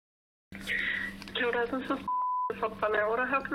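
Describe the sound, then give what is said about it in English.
A phone call being placed to Whanau Ora head office, heard down a narrow, tinny line: muffled phone-line audio surrounds a single short, steady electronic beep midway through, and the line stays busy afterward. “I decided to make a little call to Whanau Ora head office to ask for myself”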